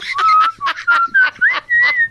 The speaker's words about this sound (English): whistles again.